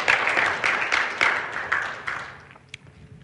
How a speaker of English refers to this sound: You can clap.